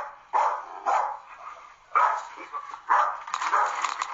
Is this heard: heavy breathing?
no